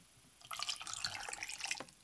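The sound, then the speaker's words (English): Cranberry juice is poured in a steady, bubbly gurgle that starts abruptly, holds for just over a second at an even level, then stops. No one speaks. “All right, now some cranberry juice.”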